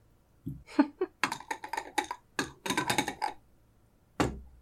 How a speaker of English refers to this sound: Let me get out my goddamn dice to roll a spot hidden.